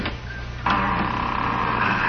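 A door lock being opened while trying not to make too much noise: a faint click, then a sharper clack followed by a sustained mechanical grinding scrape, all over a steady low hum.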